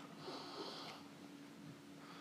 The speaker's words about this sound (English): Here we go. Plenty of air. Then sniff.